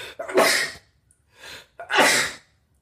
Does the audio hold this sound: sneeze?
yes